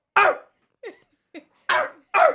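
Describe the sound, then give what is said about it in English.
A man's voice imitates a dog barking, giving five short, sharp barks in an uneven rhythm, with louder, fuller barks at the start and end and two softer, thinner ones between. “I don't have a good bark.”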